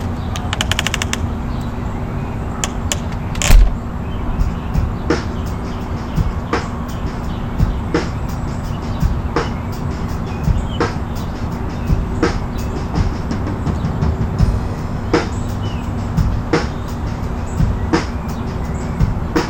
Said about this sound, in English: Okay, so like, you can kind of hear the drums, but it's like that tick, tick, tick, tick.